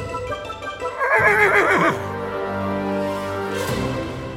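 A horse lets out a loud whinny, its quavering, shaky cry rising and fluttering before settling into a lower, steadier neigh that trails off over a few seconds. No one speaks.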